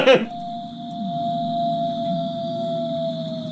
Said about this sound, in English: That one's a wolf. Yeah, that's a wolf. That's a 100% wolf. 100% wolf.